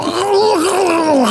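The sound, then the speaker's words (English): A man's voice imitates Arnold Schwarzenegger screaming in the chair in a film, a strained, drawn-out, sustained mid-pitched groaning cry that wavers and dips in the middle, loud and alone for over a second. “Screaming in the chair.”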